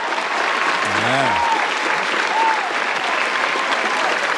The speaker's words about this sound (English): Warm welcome. Crowd's going crazy for Eddie guys.